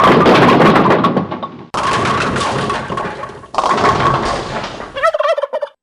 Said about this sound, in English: That was the Rev's turkey. Oh, turkey. Turkey clip. Yeah, that was a goat, but, you know, turkey goat.